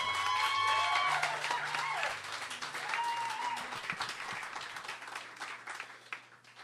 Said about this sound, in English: Round of applause, Donald Rose.